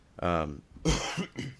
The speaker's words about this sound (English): excuse me. I think I'm getting over a cold. I keep coughing. I've been coughing the last few days.